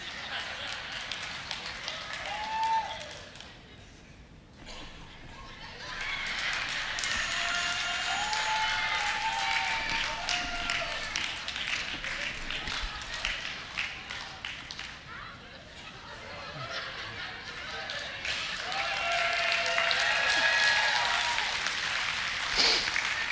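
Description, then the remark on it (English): A crowd applauds steadily for over twenty seconds after a speaker's impersonation of a chicken, a dense wash of clapping that dips briefly and swells again toward the end, with scattered voices and laughter mixed in. “Don't applause too much.”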